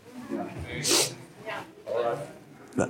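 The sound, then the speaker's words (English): A single sharp sneeze bursts out near the start, loud and hissy, while a man keeps talking around it. “God bless you.”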